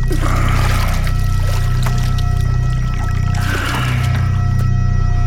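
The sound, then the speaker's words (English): Oars dip and pull through water in two slow, splashy strokes a few seconds apart, as someone on a metal seat rows a boat down a flooded Main Street toward the marina, over a steady low droning hum with no voices. “With that, I settle down on the metal seat, grab the oars, and stroke my way down Main Street.”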